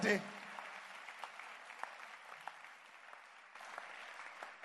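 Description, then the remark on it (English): A church audience claps together for the Lord Jesus Christ in dense, sustained applause, a steady crackle of many hands that holds at an even level after a brief louder burst at the start. “Clap your hands for the Lord Jesus Christ.”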